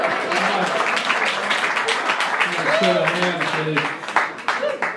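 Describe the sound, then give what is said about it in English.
At the Comedy Store on the Sunset Strip in Los Angeles, an audience applauds the comedian's son steadily for about five seconds, a dense crackle of many hands clapping, with voices and a few whoops rising through it midway and near the end. “Well, not everyone clapped, so I guess, maybe some people don't care about my kid.”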